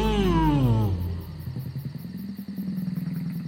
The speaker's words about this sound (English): The largest satalion had a big colorful ring around its neck. It let out a large roar as we drove by.